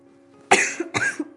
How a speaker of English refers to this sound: Trying to cough away from my microphone.